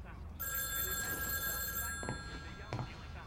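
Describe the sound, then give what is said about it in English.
A telephone bell rings in a family's living room on a fall afternoon in 1985, with a bright, sustained metallic trill that starts after a brief pause and carries through to the end, with a couple of soft knocks near the close. “when the phone rings.”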